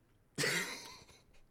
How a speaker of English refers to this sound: Someone sneezes and you say thank you?